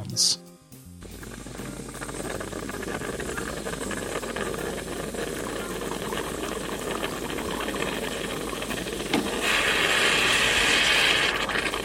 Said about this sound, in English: That is the sound of hot water being pushed through freshly ground coffee, which eventually leads to the pouring of coffee and then the drinking of coffee.